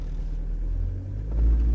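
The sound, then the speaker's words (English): A car's engine rumbles low and steady, then swells louder toward the end as the car accelerates again, with no voices. “So let's accelerate again”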